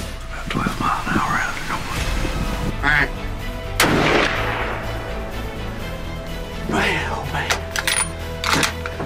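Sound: hunting rifle gunshot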